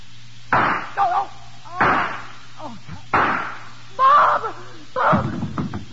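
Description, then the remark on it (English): About five sharp gunshots fired from a doorway of a warehouse crack out at uneven intervals, each loud burst trailing off with a brief echo, over a steady low electrical hum. “As the shots rang out, I jumped behind a pile of cases.”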